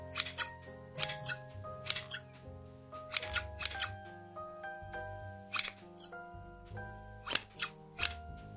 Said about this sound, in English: She continued to hear the scissors very clearly.